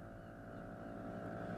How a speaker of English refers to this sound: The Curragh has an outboard motor fitted, so with little more than a cursory view of Omi Island to the north and Turbot to the south, you're already looking at the rocky coast and high central ridge of Turk